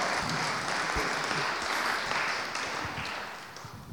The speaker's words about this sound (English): Come on, can you give God an Anglican hand clap this morning?